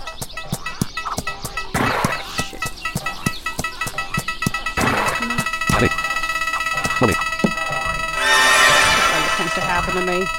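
A horse whinnies amid a steady clip-clop of hooves, with a sustained tonal background and a brighter, noisier burst near the end.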